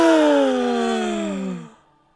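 A single drawn-out dramatic gasp, voiced and falling steadily in pitch before cutting off after a moment or two, with no other sounds around it.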